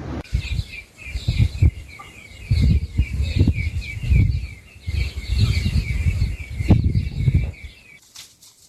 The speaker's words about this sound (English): The factory, now outgrown with weeds, was once a vibrant site which boomed with activities. The place is now very quiet, with only the sound of chirping birds and the movement of animals.